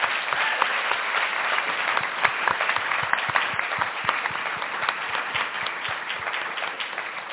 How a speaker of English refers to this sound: Can you please join me in giving them another round of applause?